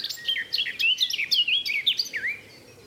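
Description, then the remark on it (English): A garden warbler sings a rapid, continuous warbling phrase of sweet, tumbling notes, clear, with no talking and only quiet background. “Thank you, Mr. Garden Warbler.”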